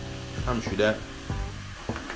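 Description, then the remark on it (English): Meat for tacos, seasoned with Goya Criollo marinade, sizzles steadily in a hot pan, a continuous crackling hiss running the whole time, with a voice briefly heard over it. “You hear that sizzle?”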